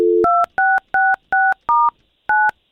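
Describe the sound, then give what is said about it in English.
A brief dial tone gives way to six loud, crisp touch-tone beeps as a man's phone number is punched in at a quick, slightly uneven pace to call him, with no talking. “All right, well, listen, all we can do here is we're going to take James' phone number and call him right now and get the both of you talking, okay?”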